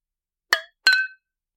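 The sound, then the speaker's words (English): Two bright clinks of champagne glasses touching in a toast, about a third of a second apart, each ringing briefly with a clear glassy tone before fading into silence. “Cheers. This is all to you. Cheers.”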